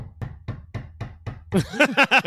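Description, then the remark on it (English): Six quick, evenly spaced, fairly firm knocks on a front door, followed by a short burst of voiced vocal sounds. “And you open the front door and someone like has like a pistol like pointed at you with in cuffs.”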